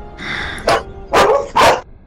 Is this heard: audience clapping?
no